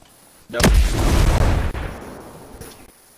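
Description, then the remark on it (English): A sudden, loud explosion of a helicopter in a video game erupts with a sharp crack, then a heavy rumbling roar that sustains for about a second before fading, with no voices heard. “It's blown up.”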